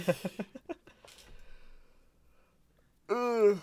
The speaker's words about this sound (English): Big yawn. Yeah, This is what? Yeah, big that's yawn, horrible for people listening, but big tired big boy. yawn.